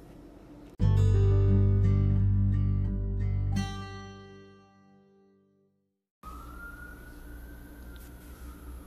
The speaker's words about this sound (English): Sirens just went off, loud sirens